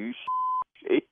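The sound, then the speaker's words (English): A single steady electronic beep from an incoming call on a phone, held for about a third of a second, loud, with brief bursts of a voice just before and after it. “Man, what the f*** is this on my damn phone? The f*** is calling me with this bullshit?”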